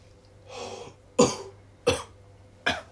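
Three sharp coughs at a steady pace, preceded by a softer breathy rasp as if clearing the throat. No talking, just a faint low hum underneath.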